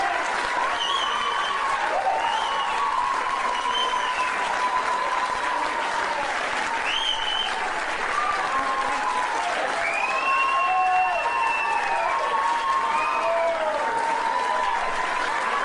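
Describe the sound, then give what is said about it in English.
Sustained crowd applause for a speaker fills the whole stretch, a dense, steady wash of clapping with scattered cheers and whistles rising above it, loud and continuous with no pause. “I wanted you to see him get applauded.”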